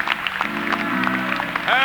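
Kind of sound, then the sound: crowd, audience hand clapping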